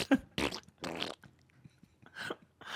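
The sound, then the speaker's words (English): A string of loud fart sounds: several raspy, sputtering bursts in quick succession, a short pause, then a couple more blasts, with no talking. “I just thought of Jar Jar farts, and someone just needs to take all the scenes with Jar Jar Binks and replace his dialogue with farts.”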